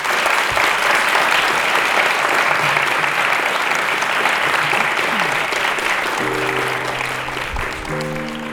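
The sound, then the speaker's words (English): Sustained, dense applause from a large crowd thanking a panel for participating fills the whole stretch at a steady loud level, with faint low musical tones creeping in toward the end. “So, we give them all a big round of applause.”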